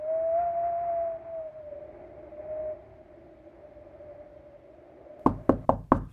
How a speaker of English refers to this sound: I thought your knock was that of Tarso.